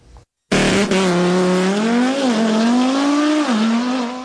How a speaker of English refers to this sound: The car, modified by Taiwanese enthusiast Liao Zixian, finished a 400-meter sprint in just 8.72 seconds in the central city of Taichung on Wednesday.